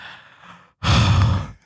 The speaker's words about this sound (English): I gotta stop breathing like that. That's getting weird.